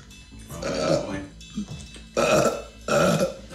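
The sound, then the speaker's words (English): A man's half-suppressed burp, pushed out in a few throaty bursts with short pauses between them, moderately loud, the middle one the fullest and the last one trailing off. “And that's not an EVP. That's him kind of half burping.”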